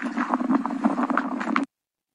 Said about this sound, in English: -8, you can hear her feet, a sound that many Canadians know so well. You hear the crunching of the snow as she walks, which always tells you it's cold.